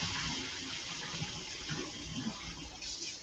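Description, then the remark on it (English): Hot tap water runs steadily over an opened tin of skinned sardines in olive oil, after a little of the oil is poured off: a continuous hiss and splatter lasting the whole stretch with no pauses and no voices. “And I'm going to pour off a little bit of the oil, and just a little bit of it, and run a little hot water on top of it.”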